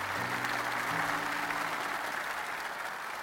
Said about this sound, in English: They are so excited. You can start to hear cheering. Whenever there's a big crescendo, as the climax of the song comes on, they're all staring at you, loving you.